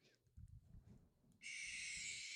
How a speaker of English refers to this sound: Do you want to give a go for the barn owl? Hold on, I'll do it again.